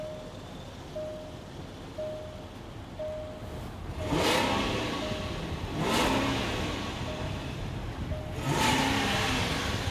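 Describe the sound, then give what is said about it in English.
A Range Rover SUV engine revs three times in quick succession, each rise cut off sharply at a rev limiter set at 4,000 rpm, fairly loud, with a faint steady chime ticking in the background and no talking. “It's limiting the revs at 4,000. It's not worth it. It sounds still a healthy sound.”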